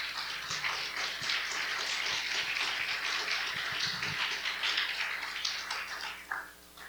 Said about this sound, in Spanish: Le va a dar un aplauso, déselo con ganas al Señor.